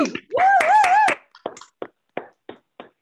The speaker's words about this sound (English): Come on, y'all can unmute your mics and clap for that.